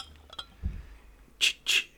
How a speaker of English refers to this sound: So let's open a bottle.